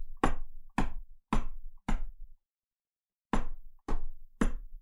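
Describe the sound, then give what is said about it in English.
Small hammers knocking outside in a steady rhythm: four sharp, ringing strikes, a brief pause, then three more. The blows are fairly loud and crisp, with no talking. “So I'll just hear these little hammers outside, these.”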